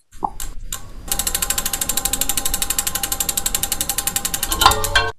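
A prize wheel is spun to pick a topic, giving a rapid, steady train of sharp clicks that rattle on for several seconds, then slows and stops with a final clack. No one speaks over it.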